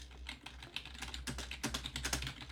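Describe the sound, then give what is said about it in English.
Rapid computer keyboard typing while searching online for a quote, a dense run of light plastic key clicks with occasional heavier taps, fairly quiet over a low steady hum, with no voices. “That was a lot of typing.”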